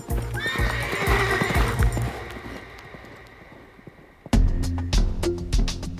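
A horse gives a loud, shrill whinny that trails off, then after a brief lull its hooves clip-clop steadily on a hard surface. No one speaks.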